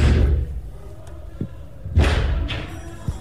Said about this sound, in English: During which time they listened to the invaders banging on that door, as you can hear on a recording from one of the staffers' phones.